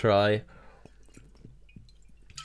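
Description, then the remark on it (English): A short voiced hum opens, then quiet wet slurps and gulping clicks follow at a steady pace as someone takes small sips of water. “Just gonna have a sip of water.”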